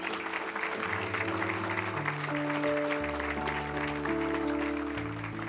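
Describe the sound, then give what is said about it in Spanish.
A church audience in the United States applauds steadily for several seconds, a dense, even clatter of many hands, while sustained organ or keyboard chords shift slowly underneath. “A los que les gustan las matemáticas pueden estar pensando, ¿y por qué aplauden si faltaron $99,000?”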